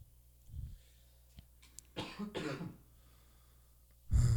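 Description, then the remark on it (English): A few harsh coughs break out in a short burst, followed by a pause and then one more loud cough, with no talking in between. “I have to excuse the coughs today.”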